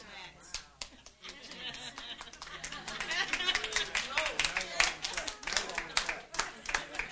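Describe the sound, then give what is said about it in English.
Wives in the audience clap in a burst of dense, overlapping handclaps that swell and keep going for several seconds, with a murmur of voices underneath. “Wives are clapping now.”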